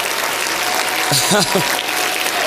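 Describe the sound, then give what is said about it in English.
A standing audience claps hands after a sermon in a dense, steady wash of noise that holds at an even loudness throughout, with a brief raised voice calling out over the clapping midway. “I want you to stand and clap your hands like you believe what I just preached.”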